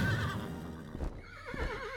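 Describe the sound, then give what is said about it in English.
A horse neighs loudly, a long wavering whinny with a trembling, descending pitch, heard on its own without any talking. It is Pegasus, a gigantic winged horse, crying out as it flies toward the heavens. “Suddenly, from Medusa's severed head sprang a gigantic winged horse, Pegasus. Pegasus let out a cry, flying toward the heavens.”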